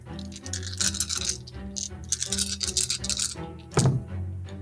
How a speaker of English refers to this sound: Roll the dice! Math rocks go click, click, clack.